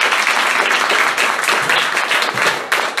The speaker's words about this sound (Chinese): 也要谢谢两位来远道而来支持的两位朋友，是在 video 看他们，来给他们一个很大的掌声。